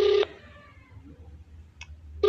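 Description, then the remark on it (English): A phone call is dialed: the phone's electronic ring tone sounds in short, loud bursts at the start and end, with a fading tail and a faint blip between them, clear with no talking. “This is a normal phone call, bruh.”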